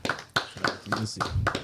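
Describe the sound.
Six sharp hand claps at a steady, moderately quick pace, each a crisp slap of similar loudness, with a faint low voice murmuring underneath.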